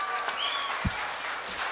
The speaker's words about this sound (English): How about one more round of applause for all these good-looking graduates here? Wow.